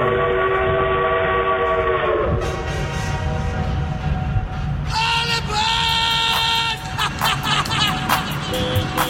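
A train rumbles loudly throughout, with sustained whistle tones sounding over the rolling low-end noise, then shifting into higher, brighter whistle blasts and clanking near the end; a sound effect introducing a Thomas the Tank Engine train yard rating segment.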